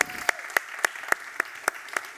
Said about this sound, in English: First of all, if this is your first time here at Grace Bible Church, we want to welcome you by giving you a round of applause. So thank you for joining us.